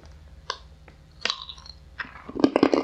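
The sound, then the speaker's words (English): Crunching of garlic rye chips being bitten and chewed, with irregular bursts that grow louder and denser toward the end, and no talking. “Oh, those sound crunchy, too.”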